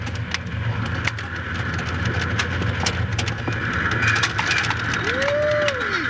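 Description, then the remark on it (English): A train rumbles steadily and loudly at speed, with rapid clattering and clicking over the tracks, and a brief rising-then-falling squeal near the end as it rounds a curve. “We're coming to the curve, Mr. Hamilton. You gents better hang on.”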